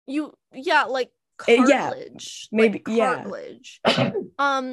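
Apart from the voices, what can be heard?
sneeze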